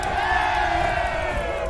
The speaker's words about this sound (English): Starts cheering again.